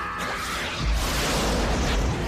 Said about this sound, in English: Yeah, that's the biggest explosion, apparently. The longest explosion ever made, really. That's what we're told at the time by John Richards, who really liked to make long explosions.